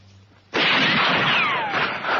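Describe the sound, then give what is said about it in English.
Rifle gunfire erupts abruptly after a brief quiet moment and continues as a loud, dense, crackling roar, with thin whining tones sliding downward through it. No one speaks. “Our own damn rifles.”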